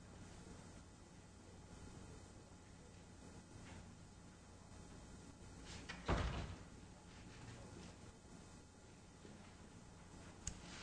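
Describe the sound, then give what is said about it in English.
A door swings shut with one solid thud about midway, preceded by a faint rustle of movement, then quiet with a small click near the end. No one speaks. “And I'm going to shut the door.”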